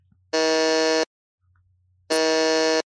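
A game show buzzer sounds twice as a contestant buzzes in first to answer a trivia question, each a loud, harsh, steady buzz lasting under a second, separated by a brief gap of near silence. No one speaks.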